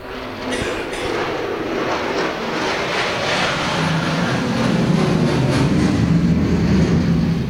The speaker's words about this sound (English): I'm guessing F-35. Sounded like it.